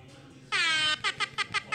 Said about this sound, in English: That was really fast for you to be able to access that. You just have that ready to go. Well, I keep an air horn. Oh, okay. I see. Yeah, I hold on to one.